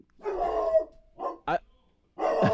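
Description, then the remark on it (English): A dog named Duke barks several times in irregular bursts, starting with a longer drawn-out bark followed by shorter sharp ones, loud, with brief silences between. “Duke the dumpster doggy.”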